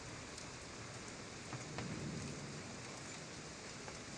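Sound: steady rain falling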